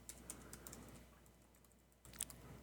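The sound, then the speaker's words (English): A man types quickly on a computer keyboard, racing against time to write down 10 words: quick, uneven clicking of keys, a steady run of soft taps with a few sharper strikes, fairly quiet, with no voices. “He's still typing away there.”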